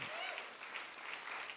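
An audience claps steadily in a dense, continuous wash of applause for a person called up to stand at the front and read Isaiah 61. The applause is moderately loud and even throughout, with no voices standing out.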